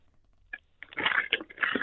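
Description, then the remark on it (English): A paper bag worn on a person's head in place of a blindfold crinkles and rustles: one short crackle, a brief pause, then a steady burst of dry, crunchy rustling for about a second. No one speaks. “I couldn't find a blindfold, so I've got a paper bag on my head.”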